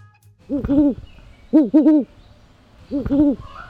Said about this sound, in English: We leave you this week with a couple of great horned owls. The great horned owl is the most common owl in the Americas, equally at home in suburbs, the woods, and farmland.